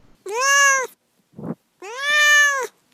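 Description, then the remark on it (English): A cat named Duarte meows twice, each call loud and drawn out, with a brief soft rustle in the pause between them and no one speaking. “All right, now it is time for Duarte's Corner, where my cat Duarte shares his opinions about the books.”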